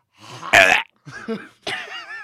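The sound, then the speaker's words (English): Three drawn-out, croaky burps in quick succession, loud, the first the strongest, with brief pauses between them and no talking. “Why do you burp like that”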